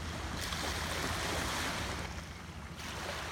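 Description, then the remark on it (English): Gentle ocean waves lap steadily onto a sandy shore, a continuous soft hiss of surf with slight swells, moderately quiet, with a low rumble of wind underneath and no voices. “You can kind of hear the waves just kind of lapping in on the shore, the sand, the sun.”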